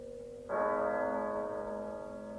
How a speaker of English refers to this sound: But as the bell sounded, light flashed up in the room.